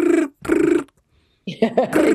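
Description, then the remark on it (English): A voice mimics a 1980s landline hall telephone ringing with two short, trilling rings separated by a brief pause, loud, followed by a moment of someone talking. “But I was thinking, how the heck did we all get on in the 80s when the hall phone would ring out of the blue, you know, tea time, you're sitting down for tea, next minute from the hallway.”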